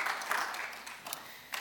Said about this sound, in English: So, and you clap for that. I know we got one clap. That's it. I'm thankful for that.